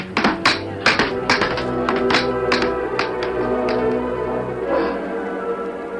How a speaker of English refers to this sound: Now you hammer harder and listen to this. All right.